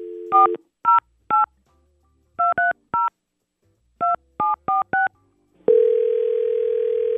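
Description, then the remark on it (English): A brief dial tone, then about ten crisp touch-tone beeps punched in irregular clusters, followed by a steady, loud line tone that holds to the end. No voices. “Let's give him a call.”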